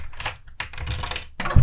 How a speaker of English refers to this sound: Okay, let's unlock the door.